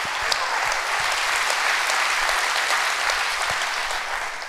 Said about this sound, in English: We're going to come out of those issues today in the name of the Lord. Clap your hands real big and rejoice in that.